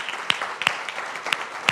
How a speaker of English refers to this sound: So happy Mother's Day. Can we that are not mothers thank our mothers with a round of applause?